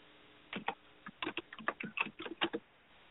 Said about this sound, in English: I hear Janet on the computer clicking away.